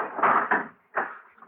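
Large hangar doors rumble and scrape shut, with a couple of heavy clunks followed by a final thud as they close. No voices, and the noise is moderately loud.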